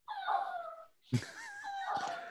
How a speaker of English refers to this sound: There's a dog. Yeah. My little one trying to crack fucking get under the door into my office.